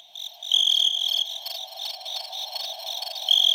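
insect, cricket chirping sound effect

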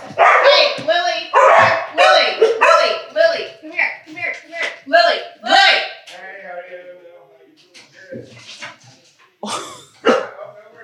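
animal, dogs barking at doorbell

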